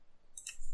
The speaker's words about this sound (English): My keyboard is way too loud to be typing. Oh, you can hear all the typing stuff. Would you like me to type something just so you can hear it? It's a mechanical keyboard.